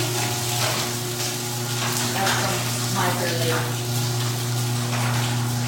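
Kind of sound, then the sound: nature, heavy rain pouring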